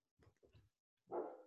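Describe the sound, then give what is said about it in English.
The speaker's dog barks three times, two quick short barks followed by a louder, longer bark after a brief pause. “I just had to take a pause because my dog was barking for some reason.”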